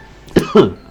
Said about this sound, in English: You can just cough.